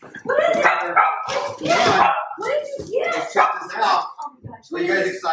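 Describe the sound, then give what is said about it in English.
Reagan, a Doberman, barks excitedly as a new shipment from MyPillow.com is opened for him, a rapid run of loud, yelping barks in quick bursts, with a person's voice mixed in around them. “And Reagan the Doberman got some new stuff.”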